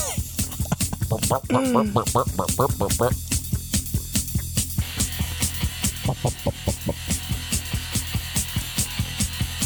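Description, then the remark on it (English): A music track plays with a crisp hi-hat ticking at a steady, quick pulse, its bright metallic hits repeating evenly over the drums and a melodic backing. “Listen to that hi-hat.”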